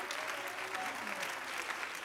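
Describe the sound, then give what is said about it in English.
An audience claps hands unto the Lord in thanks and praise, a dense, steady wash of applause, many overlapping claps blending into a continuous roar, with faint voices underneath. “You ought to clap your hands unto the Lord right now and give him thanks and praise.”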